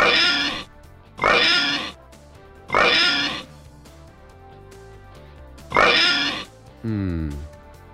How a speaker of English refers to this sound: That's it. Hand off the oinker. That's four. A four oink.